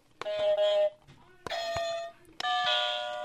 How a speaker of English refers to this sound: We are on to our second team trivia contest, and we have two new teams. Do you guys want to try out your buzzers before we begin?